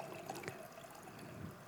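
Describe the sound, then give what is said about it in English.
Water pours steadily into a container, a continuous splashing and trickling with small bright drips on top, fairly quiet and with no voices. “Keep pouring. Is it okay? Okay. Keep pouring.”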